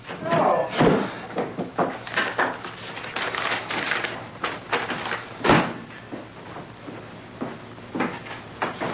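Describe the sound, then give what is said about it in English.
A screen door slams shut with a sharp, rattling bang, followed by a second clattering slam a few seconds later, amid background voices and household bustle. “Don't leave the screen door open!”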